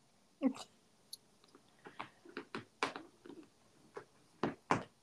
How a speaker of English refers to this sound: Can you hear my cat scratching? Yes. She decided she wanted to announce her presence with authority.